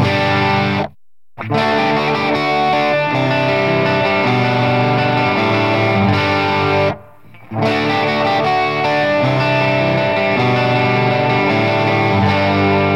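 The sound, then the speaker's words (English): An electric guitar with crunchy overdrive plays loud, sustained chords, briefly cutting out twice before ringing on again. No one speaks. “And overdrive can be crunchier like this.”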